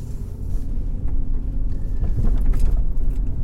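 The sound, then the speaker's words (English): Steady road traffic rumbles, a continuous low drone of car engines with passing vehicles swelling slightly, heard outdoors at a busy street intersection without any talking. “Okay, I gotta go and get across this intersection.”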